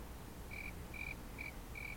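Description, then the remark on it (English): A cricket chirps four times in an even, steady rhythm, each short high trill standing out clearly over a quiet, low background hiss. “Is this a cricket time? Really? You're going to cricket me for that?”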